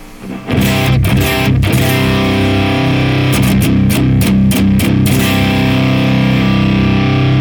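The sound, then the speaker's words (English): A loud, sustained distorted guitar drone from a guitar pedal's drone drive section, a modified RAT-inspired circuit set to its right-side voicing, with thick, steady harmonic layers, broken by brief choppy gaps and strummed accents early on and again in the middle, with no voices. “Here is the drone.”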